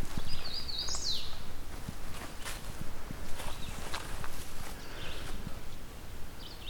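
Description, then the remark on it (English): A second hooded warbler sings one short, bright phrase at the start and a brief fragment near the end, while crunching footsteps keep a steady walking rhythm throughout as someone walks back from another hooded warbler's territory. “Another hooded warbler on my way back from the other hooded warbler territory.”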